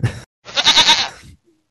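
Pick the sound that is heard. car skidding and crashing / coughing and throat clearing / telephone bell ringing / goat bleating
goat bleating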